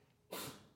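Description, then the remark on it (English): A single sudden sneeze bursts out after a brief quiet moment, a sharp explosive blast of air that trails off into a breathy hiss, with no talking. “Bless you.”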